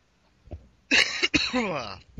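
A loud, close cough bursts out in two rough, forced hacks, the second trailing into a raspy voiced rumble before fading to quiet.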